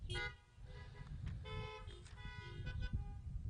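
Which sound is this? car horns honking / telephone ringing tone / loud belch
car horns honking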